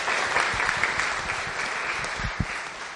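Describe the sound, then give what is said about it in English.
An audience claps steadily, a dense wash of many hands with no pauses, fairly loud and continuous, with a few sharper claps standing out near the end. “I think both of those people need a round of applause just for being brave enough to articulate something.”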